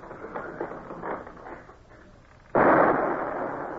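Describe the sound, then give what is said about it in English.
A single loud shot from a ship's cannon, fired at a leading boat at sea, booms out after a stretch of low rumbling background noise, its heavy blast sustaining and slowly fading rather than cutting off. “Lay a course so that I can keep that leading boat under fire.”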